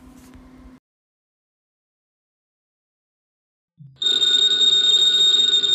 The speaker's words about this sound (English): Ladies and gentlemen, that phone bell means adventure. Hello? Hello.